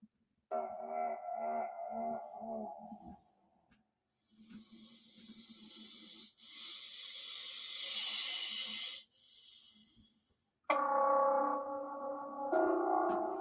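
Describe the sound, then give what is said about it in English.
A strange reconstructed T-Rex call: a low, pulsing honk, then a long, loud breathy hiss, ending with another droning, harmonic honk, unaccompanied by talk. “It does not sound like that. It sounds like this weird honk.”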